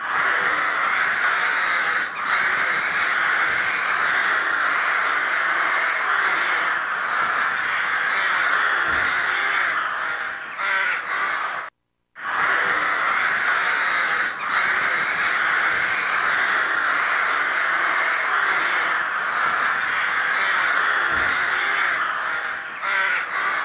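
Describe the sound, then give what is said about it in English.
A loud, dense chorus of corvids cawing continuously, many birds calling over each other in harsh overlapping croaks, with a brief silent break midway and no talking. “And she sent me a recording in the time of COVID of some corvids. I'm not sure if it's ravens, it might be rooks.”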